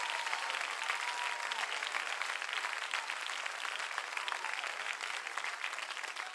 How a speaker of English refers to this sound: Oh, clap your hands if you can. Clap your hands if you will. Oh.